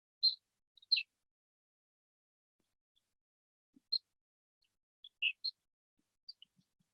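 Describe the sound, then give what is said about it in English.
Short, high-pitched bird chirps come in sparse bursts over several seconds, faint against an otherwise quiet background with no voices. “My voice, the sounds of the birds, and everything else that is happening around you.”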